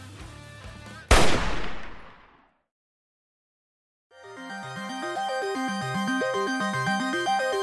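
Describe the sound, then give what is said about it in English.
A single loud rifle shot, from a rifle propped against a door firing into the door, cracks out over soft tonal music, its blast fading over about a second into silence before a melodic music bed starts up again. “So Poe, as you kind of shoulder slam this door, you kind of fall inwards, and right behind you, a like rifle that's been like kind of not taped, but you know, put up against the door, shoots right behind you into like the door itself.”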